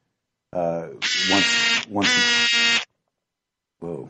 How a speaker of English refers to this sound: Just got a weird noise. Sorry, the phone. Okay. Well, you're not going to miss too many phone calls like that. So, okay, I could hear that all the way from Toronto.